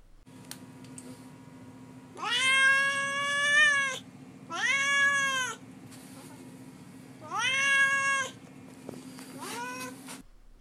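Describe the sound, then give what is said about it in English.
A cat named Duarte meows three times in long, drawn-out, wavering cries, loud, with a faint fourth meow starting at the end over a steady low hum. “All right, we'll move on now to Duarte's Corner, where I give my cat Duarte the opportunity to express himself.”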